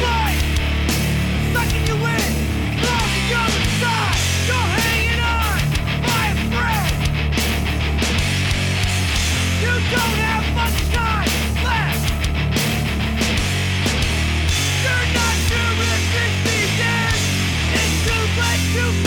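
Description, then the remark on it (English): Loud, dense hardcore punk plays without a break, distorted guitars and pounding drums driving hard beneath harsh, screamed vocals that sit right up front in the mix. “What he needs to do is actually get in the booth and sing his shit instead of screaming.”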